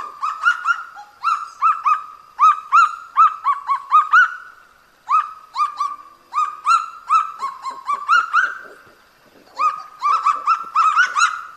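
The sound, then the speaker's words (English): A kagu, a flightless chicken-sized bird found only in New Caledonia, calls loudly and alone in rapid, rhythmic runs of harsh, barking notes, the series breaking off briefly twice before starting up again; used as a shortwave radio daily sign-on call in New Caledonia. “The shortwave service from RFO in New Caledonia also adopted a bird call as part of their daily sign-on routine”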